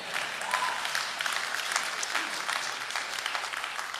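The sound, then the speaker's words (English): An audience claps steadily, a dense, continuous patter of many hands with no clear rhythm, holding an even volume throughout without any voices rising above it. “Did somebody want to clap right there?”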